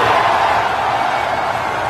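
A large crowd roars and cheers for Elon Musk in a dense, steady wall of sound that stays loud and unbroken for a couple of seconds, with no single voice standing out.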